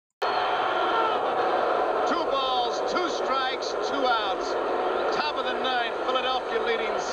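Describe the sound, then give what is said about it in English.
A baseball stadium crowd roars loudly and steadily, a dense wash of cheering voices with occasional rising shouts poking through, sustained without a break for about seven seconds, as Tug McGraw pitches to Willie Wilson to close out the game. “But you can just hear the roar of the crowd.”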